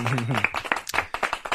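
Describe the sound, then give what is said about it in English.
A short burst of hand claps, around five sharp smacks in a loose, steady rhythm, following a brief moment of voice at the start. “I thought you were going to do some claps.”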